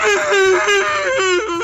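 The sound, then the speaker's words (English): Muffled wailing and crying in pain from a man gagged with gauze and tape: one loud, continuous voiced moan whose pitch wavers and dips, with brief catches and no words. “Among the muffled wailing and crying, the woman smiled at her handiwork.”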